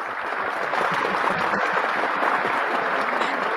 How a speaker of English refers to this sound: We give you a round of applause there.